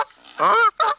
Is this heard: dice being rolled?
no